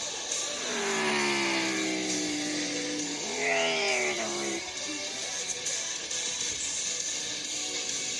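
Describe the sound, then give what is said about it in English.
Racing cop cars scream and climb through their gears on a track, one car whooshing closer and past midway, over a constant wash of track noise. Loud and continuous, with no clear talking. “The F1 cars have a lot more grip than these cop cars.”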